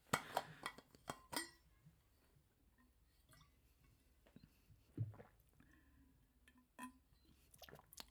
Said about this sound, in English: Give me a second to drink some water here.